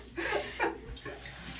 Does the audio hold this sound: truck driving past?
no